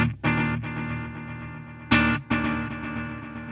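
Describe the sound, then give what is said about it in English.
Electric guitar run through stacked delay and reverb pedals, including a Keeley Electronics Halo, with a few strummed chords that ring out and sustain into a smooth, effected wash. It is fairly loud, with no voices. “We're going to engage the different delays and reverbs and dial in tones independently.”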